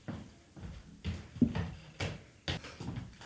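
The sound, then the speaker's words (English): A door is pushed shut, with a firm thud among several softer knocks and shuffling bumps spread over a few seconds. “I'm going to go close the door.”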